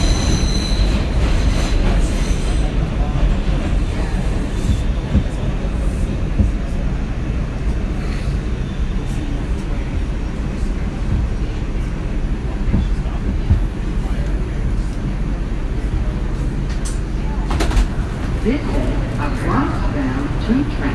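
A subway train rumbles steadily along the tracks between Park Place and Chambers Street stations, heard from inside the car: a continuous loud low roar with occasional metallic squeals and rattles from the wheels.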